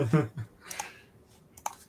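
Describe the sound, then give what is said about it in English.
Quick, crisp rustles of paper pages being flicked, two or three brief bursts, with a little low murmuring voice at the start. “Annoying to hear flicking paper.”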